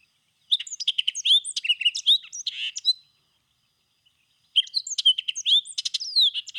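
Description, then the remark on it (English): A songbird sings two bursts of rapid, intricate chirps and trills, separated by a brief pause. The song is clear and high, with no voices present. “Let's play this bird.”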